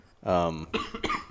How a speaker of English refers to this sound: And still got the vid cough. Sorry, I still got a little cough.